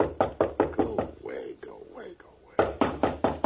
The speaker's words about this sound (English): I'm just going to let him knock.